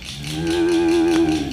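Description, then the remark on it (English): A cow lets out a single long, loud moo, a steady low bellow held for over a second, with no talking. “Next, they came to the cow section.”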